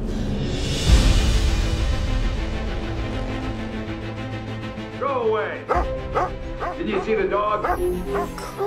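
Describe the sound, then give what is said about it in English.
A dog barks and yips several times in quick succession in the second half, fairly loud, over a dense, steady background bed of sound. “Did you see the dog?”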